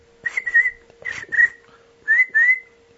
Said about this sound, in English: Crickets. Crickets.